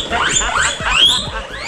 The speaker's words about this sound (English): That sounds like an alarm. It's a guinea pig.